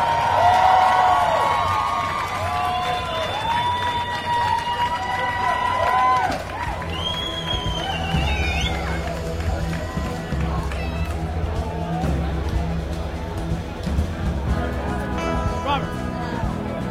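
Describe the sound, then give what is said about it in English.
An IndyCar Series race crowd in Baltimore applauds and cheers drivers Tony Kanaan, Oriel Servia and winner Will Power as champagne is opened, a steady, dense roar with rising whoops and whistles cutting above it and indistinct voices mixed in. “How about a foreign race fans, another big round of applause.”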